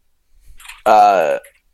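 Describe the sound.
A voice imitates a door closing: a few soft, clicky rustles, then a loud, sustained, buzzy vocal creak about half a second long that holds a steady mid pitch before cutting off.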